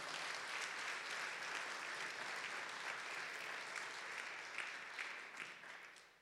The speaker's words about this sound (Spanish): Si lo creen, dar un fuerte aplauso al Señor.